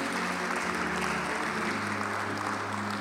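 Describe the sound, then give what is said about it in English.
A crowd claps steadily throughout as a clap offering to God, a dense, continuous wash of many hands with a low hum running beneath. No voices cut through the applause. “Give God a better clap offering than that.”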